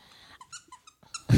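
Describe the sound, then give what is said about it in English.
A squeaky lobster dog toy gives several short, high-pitched squeaks in an uneven rhythm, ending in a sudden loud, rough burst of noise. “Squeak, squeak, squeak?”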